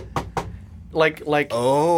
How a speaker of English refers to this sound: Like a loud knocking, and it terrifies Noah.